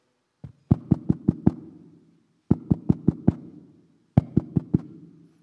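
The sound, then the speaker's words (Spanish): Three bursts of sharp knocks on a wooden door, a mother knocking on her daughter's room door, each a quick run of about four or five raps with a small lead-in tap, separated by short pauses. Fairly loud, with a dull resonant thud and no voices. “Viene y le toca la puerta.”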